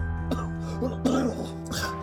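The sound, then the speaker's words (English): A short coughing fit: three harsh, throaty coughs spaced evenly over two seconds, over a steady low hum in the background. “I haven't been well lately, but these coughing spells don't usually last very long.”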